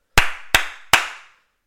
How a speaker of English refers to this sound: That was retarded. I don't know why I clapped three fucking times. I just meant to clap once.